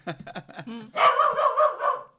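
A corgi barks: a few short, clipped yips give way to a rapid, loud run of about five high-pitched barks in quick succession.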